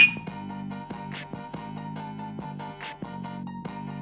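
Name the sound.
glasses clinking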